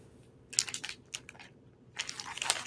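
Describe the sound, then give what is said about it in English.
Crisp crinkling of a plastic bag being tugged and pried at by someone with long fingernails trying to open it, in irregular bursts with brief pauses between, fairly loud, with no talking. “I'll do whatever it takes to open this bag.”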